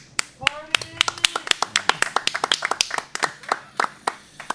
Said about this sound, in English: Her claps. Her clapping.